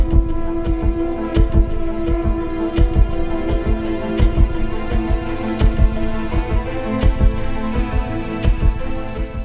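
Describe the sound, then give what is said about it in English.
A steady electronic heartbeat pulse of repeated low thumps drives a dark film score, layered over sustained droning synth tones, as a film introduces a world of manipulating dreams. No one speaks. “As we are introduced to the deliberate world of manipulating dreams, the score with its electronic heartbeat pace follows Cobb on his quest to find the secret within the subject's mind.”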